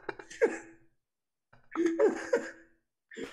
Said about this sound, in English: Did he almost just throw up? I fucking coughed, Jesus. That was a cough?